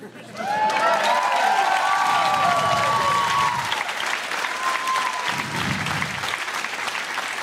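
A crowd bursts into steady, loud applause that runs for several seconds, with a few whoops and whistles rising over the dense clapping before it begins to thin slightly.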